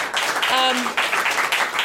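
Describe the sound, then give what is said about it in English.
A crowd applauds the storytellers steadily, dense clapping filling the whole stretch, with a brief high whoop or cheer rising above it partway through. “So can we get another round of applause for all of our storytellers?”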